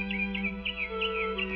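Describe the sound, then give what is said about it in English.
Birds sing sweetly on May 10th in Summerfield in quick, repeated chirping notes, about five bright tweets in a steady rhythm, heard alone over a low, constant hum from an old recording. “Why on May 10th should the birds be singing so sweetly?”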